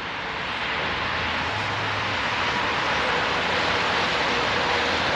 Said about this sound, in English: Yeah, that's the major highway.